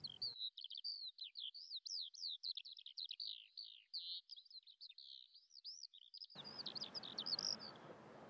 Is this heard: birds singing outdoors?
yes